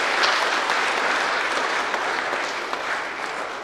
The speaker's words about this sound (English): Let's give Renee and Adele a big round of applause. They did a fantastic job.